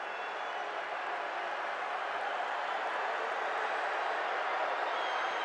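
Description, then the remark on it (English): A large basketball arena crowd, on its feet, roars and cheers as a player misses the first free throw, a steady, dense wall of noise that holds at a constant level throughout, with no single voices standing out. “Crowd wants chicken, and Bassey misses the first free throw. Crowd on their feet.”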